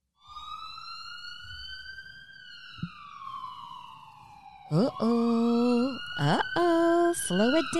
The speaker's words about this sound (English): Slow it down. The man is behind us. I don't know about you, but whenever I hear sirens, you know, it just kind of does something to me.